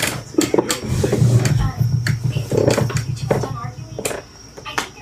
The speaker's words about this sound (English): Oh, I'm so sorry that my chair is so squeaky. I hope it's not too loud.